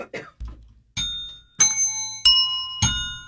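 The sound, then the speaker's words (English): A few soft knocks, then four slightly out-of-tune bells struck one after another at a steady pace, each ringing out clearly and lingering before the next. No one speaks. “We want to tune up our bells?”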